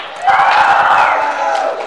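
A crowd cheers and claps loudly while one high, sustained yell rises above the noise, the whole burst swelling quickly and holding steady for under two seconds.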